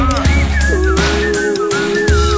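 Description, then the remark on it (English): A person whistles along to a song, a bright, wavering whistled melody gliding over the song's steady musical backing with deep bass, sustained and fairly loud, blending with the song throughout. “Blow your smoke into the air and start to whistle along.”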